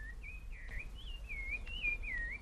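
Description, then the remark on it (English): A calandria mockingbird sings a continuous warbling, whistled phrase that slides up and down, fairly clear over a low background hum of bees, with no talking. “That's a calandria. Apart from the bird song, I can hear the hum of the bees.”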